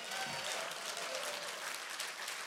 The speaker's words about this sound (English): If you love Jesus, give him a great big round of applause.